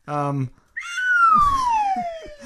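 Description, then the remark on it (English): A brief voiced sound, then a downslide whistle: one clear, loud tone gliding steadily lower in pitch for nearly two seconds before trailing off. “To get that, boy, to get that downslide whistle we haven't used since I told the story about my heart boo-boo.”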